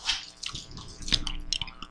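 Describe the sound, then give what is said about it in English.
Wet chewing of candy: irregular smacking and squishy clicks over a couple of seconds, quiet, with no talking. “Mine seems exactly as crunchy. No, mine's chewy.”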